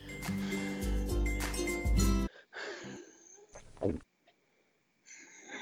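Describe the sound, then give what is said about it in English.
Someone drinking milk: a loud, dense burst of sound gives way to short breathy gulps, a glassy clink and a sharp noisy swallow, separated by brief silences, with no talking. “That was someone drinking milk.”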